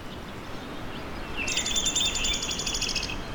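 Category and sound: bird, downy woodpecker calling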